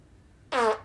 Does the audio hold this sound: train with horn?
no